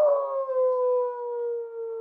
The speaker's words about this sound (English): She hears the dog on the porch just howling in great pain.